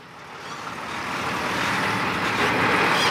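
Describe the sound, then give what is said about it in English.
A large truck rumbles past on a road, its broad engine and tyre roar swelling steadily louder over three seconds. No voices. “There's another huge truck.”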